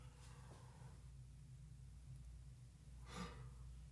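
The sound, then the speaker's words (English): A breathy yawn with a soft airy intake near the start and a longer drawn-out exhale toward the end, over a low steady hum and no talking. “I had to yawn, man.”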